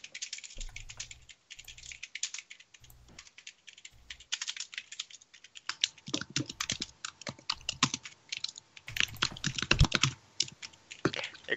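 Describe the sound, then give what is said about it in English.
Rapid, clattering keystrokes from two people typing at once on computer keyboards, fairly loud, starting in short bursts and then settling into fast continuous typing with no voices. “What are you guys typing? Sorry. Loud typing.”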